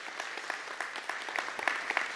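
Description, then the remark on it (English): An audience applauds new church members steadily, many overlapping hand claps forming a dense, continuous patter of moderate loudness with a few sharper claps standing out. “Yes, you can applaud for them.”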